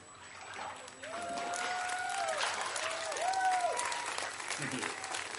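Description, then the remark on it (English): An audience cheers and claps after a baptism, a steady wash of applause with excited voices and whoops rising over it for several seconds, loud and sustained throughout. “That was a good cheer.”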